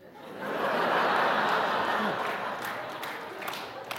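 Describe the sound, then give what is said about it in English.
At a comedian's stand-up show, a short burst of audience applause for a joke swells in quickly and holds as a dense, crackling patter for a few seconds before easing slightly, with some laughter mixed into the crowd noise. “A little smattering of applause for that.”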